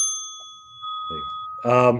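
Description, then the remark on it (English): A single bright bell ding rings out at the start and its tone lingers and fades while voices begin talking, one growing louder near the end. “Dead Bell.”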